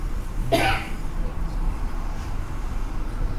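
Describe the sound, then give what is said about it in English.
One short, sharp cough, followed by a steady low rumble of background noise for the rest of the moment; no talking. The cough comes from someone just getting over bronchitis. “is looking for a cough drop. I just got over bronchitis, so if I'm sounding slightly more … than you're used to.”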